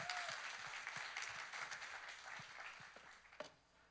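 A crowd claps steadily, a dense patter of many hands forming a continuous wash of applause that gradually thins and softens toward the end.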